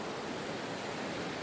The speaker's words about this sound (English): The sand is cool to the touch, and the waves rush in, then retreat out in a hypnotizing rhythm.